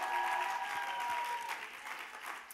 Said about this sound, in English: Can we give her a round of applause one more time?